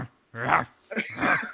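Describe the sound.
A man growls like an animal, two rough, throaty snarls in quick succession, fairly loud, a human voice imitating a dog's growl.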